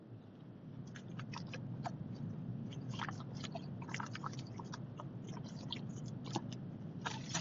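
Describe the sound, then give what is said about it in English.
Someone sips water: a run of small wet mouth clicks and gulps over a low steady background hum, with no talking. “Hang on, let me get a sip of water.”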